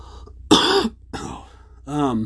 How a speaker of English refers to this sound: I have a cough.